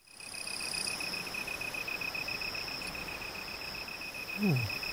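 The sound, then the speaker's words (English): Steady, high-pitched cricket trills ring continuously over a soft nighttime ambience, with a brief low descending sound near the end. “It's just crickets, yep.”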